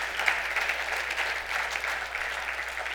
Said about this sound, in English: It makes me want to shout and holler and clap. And can we just give Jesus a big clap today? That's such good news.